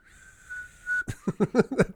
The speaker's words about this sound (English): So we'll just keep doing the podcast and not acknowledge that one of our noses is whistling.